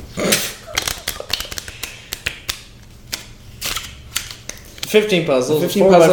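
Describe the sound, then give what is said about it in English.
Rapid, irregular clicks and clacks of the small plastic tiles of a 15 puzzle (a 4x4 grid sliding puzzle) being slid and shuffled for several seconds before a person starts talking over the last of the clatter. “Let me just shuffle the rest of them.”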